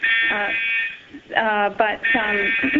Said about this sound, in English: Sorry, we're in a place where a fire alarm is going off. It would just happen during this call.